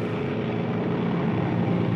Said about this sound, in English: Everyone's scared, you know, because when they hear a plane coming, they thought it's, you know, a war coming.